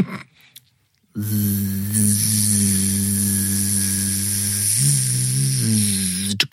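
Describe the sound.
A voice imitates a tattoo machine with a steady, low, rasping buzz and a hissy edge. It holds for about five seconds, wavering briefly in pitch before cutting off.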